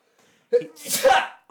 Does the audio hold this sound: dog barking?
no